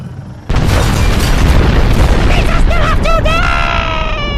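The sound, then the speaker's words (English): A sudden, loud explosion at Dexter's Diner in the restaurant district bursts in after a brief quiet moment and becomes a dense, sustained roar of rumbling debris, with shrill wailing tones rising above it near the end. “There was an explosion in the restaurant district today when two fearsome bounty hunters, Suckus and Forlom, took Dexter's Diner hostage this afternoon.”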